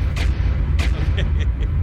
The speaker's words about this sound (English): I got to add the explosion.